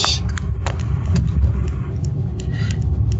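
An air conditioner runs with a steady, low mechanical hum and rumble that drones without pause, with a few faint clicks and ticks scattered over the continuous noise and no voices.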